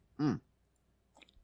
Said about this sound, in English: Oh, you're slurping.